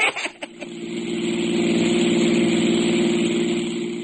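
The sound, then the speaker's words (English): A car engine catches after a few brief clunks and settles into a steady idle, its low hum rumbling evenly for several seconds with no voices. “Well, when we hit Miami, we rented a car, and as for the course, we made it in par.”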